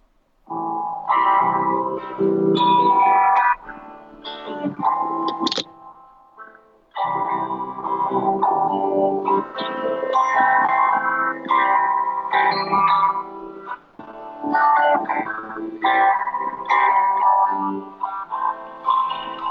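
A song with heavily processed vocals, the voice thick with distortion and chorus-like effects over steady music, briefly dropping out for a moment before continuing at full loudness.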